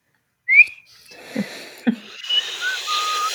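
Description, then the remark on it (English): Someone tries to whistle as a signal, getting only a brief thin squeak before it collapses into breathy, hissing blowing into the microphone, with a couple of puffs popping against it. “I can't actually whistle, guys. That's my one thing in life that I cannot do.”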